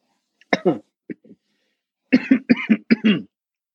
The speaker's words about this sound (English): Sorry, it's like all it's doing is making me fucking cough. My fucking lungs aren't what they used to be, ladies and gentlemen.